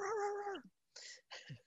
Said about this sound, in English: Oh, is that? Oh, Steve's cat. I was like, what just moved on his head?